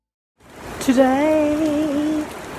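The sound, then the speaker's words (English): Steady rain hisses down in a broad, even wash. For over a second, a sustained, voice-like tone rises above it, then fades while the rain carries on. “Today it rained.”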